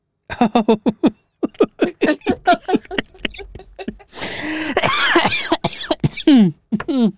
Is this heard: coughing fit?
yes